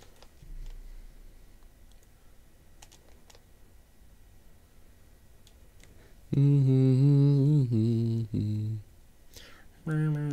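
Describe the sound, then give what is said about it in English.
Soft, scattered clicks of typing on a computer keyboard fill the first six seconds, quiet and irregular. Then a loud, sustained voice takes over, drawing out long tones. “Oh, God, I keep forgetting I can just use the fucking keyboard myself.”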